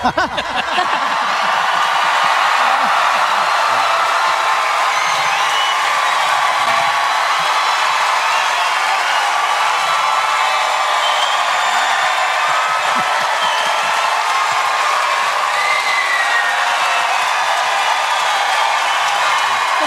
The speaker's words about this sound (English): Big clap in 3, 2, 1.